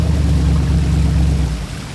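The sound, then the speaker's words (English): A loud, deep churning roar of seawater in a bay, churned by an enormous burst of power, with a heavy low rumble and hissing spray, holding steady for over a second before easing off slightly at the end. “An enormous burst of power rocked the bay and trillions of gallons of seawater churned everywhere.”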